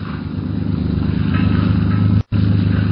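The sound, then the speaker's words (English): A motorboat engine drones steadily and loudly as the craft heads out to sea at night in fog, a constant low rumbling hum that cuts out for a split second near the end before resuming. “Turk steers the motor craft out to sea.”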